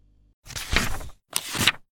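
A door swings open with a broad, sliding whoosh, then after a short pause closes with a second similar rush of sound, both fairly loud.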